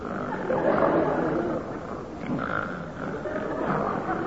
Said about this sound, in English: But he'll lie awake all night with his granddad. Listening to the snoring. Oh, you should hear him.